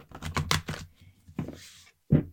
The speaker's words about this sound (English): These cards are very smooth. They are a wonderful size, about the size of your hand. You're going to hear me shuffling. This is me shuffling the deck. Oh, I love it. I love this sound.